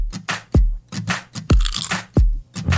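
Crisp crunching bites of a Whatchamacallit candy bar, a crunchy peanut buttery candy bar with chocolate, opening a Hershey commercial jingle: several bites in quick rhythmic succession, each with a sharp crackle and a low thud, heard alone with no voices.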